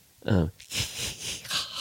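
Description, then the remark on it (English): A voice imitates a baby Xeno creature: a short, strained voiced gasp, then a long breathy hiss of escaping air that swells and fades in a few uneven pulses. “It's all based on gasps. And okay, kind of I love this. Hisses and gasps. Hisses and gasps. Various escapes of air.”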